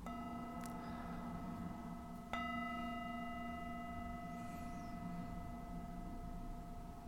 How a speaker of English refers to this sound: And listening for the sound of the bell.